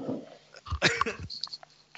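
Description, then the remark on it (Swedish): A kitchen chair is pulled in, scraping across the floor in a short, rough drag lasting about half a second, with a few bumpy bursts of grinding noise followed by faint knocks and rustles. “Nej, men var kökstolen när du drog in den?”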